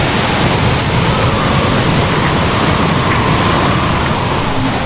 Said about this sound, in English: It's here. The howling wind, the driving rain, the storm surge along the coast.